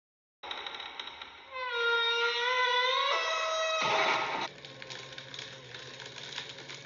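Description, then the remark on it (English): A paper shredder runs in Carvel's offices in Yonkers, New York, as a secretary shreds papers. Its steady mechanical rattle rises into a loud, whining motor drone for a few seconds while it chews through paper, then drops back to a lower hum. “That lady at the paper shredder,”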